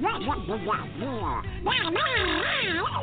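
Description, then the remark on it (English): Actor Sam Quanson, longtime voice of Donald Duck, imitates the cartoon duck, rattling off squawky, garbled, quacking speech in a continuous loud burst lasting about three seconds. “I used to do the voice of Donald Duck for many years.”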